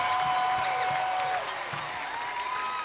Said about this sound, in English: Can you help me make welcome our Father, Apostle Joshua Selman? Is that how you celebrate grace? Grace on two legs. Please, can you keep clapping for my Father?